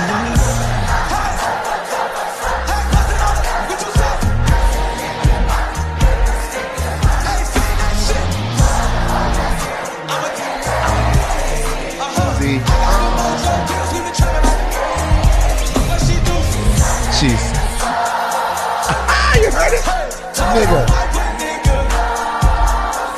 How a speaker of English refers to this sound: I have chills though when I hear the crowd singing it. Not once, but twice. Like real chills.